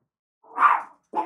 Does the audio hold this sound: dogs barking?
yes